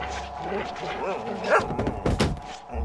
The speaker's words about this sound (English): Thank you, my good boy. Oh, you are a ragged mess now. You'll have to forgive my doggy boy. He's eager to please, but doesn't quite always know his own strength.